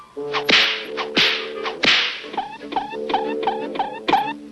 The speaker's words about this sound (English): Hey, it looks like I gotta crack the whip on this critter.